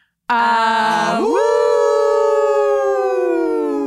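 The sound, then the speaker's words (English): People in a sound booth howl like werewolves in one loud, sustained cry that starts low, sweeps upward in pitch, and then holds steady on a long, wavering note. “And then we howl.”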